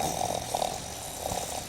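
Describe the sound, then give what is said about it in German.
A drowsy person in bed, being told to get up, grunts and snorts low in the throat, a few rough bursts with brief pauses between, sounding half-asleep and reluctant, while rain falls against the windows. “Hör auf zu grunzen, du bist kein Ferkel.”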